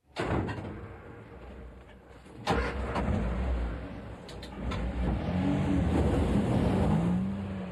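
A peat bagger machine cuts turf and spreads it, its buckets cutting into the bank and feeding a conveyor and macerator; the heavy engine drones steadily with rumbling, clanking bursts and a sharp knock partway through, while a rising mechanical whine creeps in toward the end. No one speaks.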